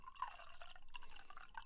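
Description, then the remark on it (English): Wine pours into a glass, a quiet, continuous stream of gurgling and dripping sounds with bright splashy tones, with no voices. “And then if you double up that sound, it'll sound like both of us have had a glass of wine poured.”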